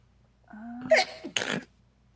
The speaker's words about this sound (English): Yeah, I just always sound like my brain's about to fall out when I sneeze.